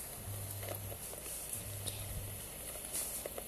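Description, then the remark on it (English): Soft, steady rain patters on a nature trail as someone walks in it, a diffuse hiss broken by scattered drips and taps, with a faint low hum underneath and no voices. “You can hear the sound of raining.”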